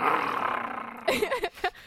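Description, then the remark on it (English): A person growls like a werewolf: a long, raspy snarl followed by several short guttural bursts, loud. “Or the werewolf version of ….”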